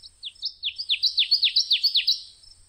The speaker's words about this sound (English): I hear the night warbler breaking out as in his dreams, made so from the first for some mysterious reason.